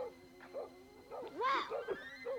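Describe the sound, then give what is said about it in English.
A dog barks and yelps in a rapid, agitated string of short calls, with one longer, drawn-out whining bark in the middle, with no one talking. “The dog is having fucking none of this.”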